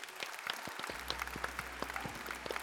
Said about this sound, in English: Friends, that's going to be a show today, and like we do at the end of every show, let's go ahead and clap it out.